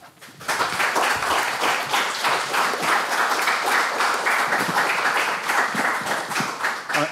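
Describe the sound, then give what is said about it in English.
An audience bursts into applause after a presentation on education, following a brief quiet moment, a dense, steady crackle of many hands clapping that stays loud and even for several seconds with no voices. “I'm often amused when people clap, it's either to get you off or that you know got something from it.”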